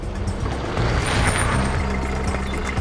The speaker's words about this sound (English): A passing flatbed stops next to one of the folks waving a bit of white and tells them to hop in the back. They drive off, scooping up others all along the way.